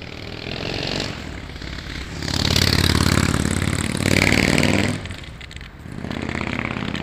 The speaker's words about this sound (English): Nice motorcycle.